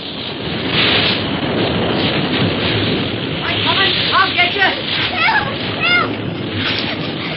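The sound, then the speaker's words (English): A continuous loud roar of crashing ocean surf around a swimmer being carried out to sea fills the whole recording, with surges of churning water; faint shouting voices rise briefly over the din partway through. “Say, look at that big coma racing toward her. Suffering whang doodles. She's lost her foot and she's going out to sea.”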